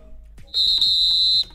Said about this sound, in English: If this were a real bit of extra time, this is when the ref would blow the whistle because it's finished.